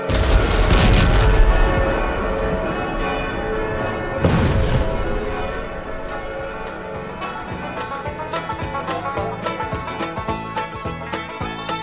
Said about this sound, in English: The occasion was enlivened by the presence of a number of cowboys from the ranges who punctured the air with pistol shots.